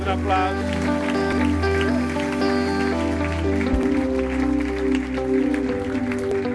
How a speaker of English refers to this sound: Give the Lord a great Amen. Clap offering.